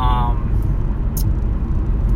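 Steady low rumble of road traffic fills the background, a continuous wash of passing vehicles with no quiet gaps, and a brief snatch of voice at the very start.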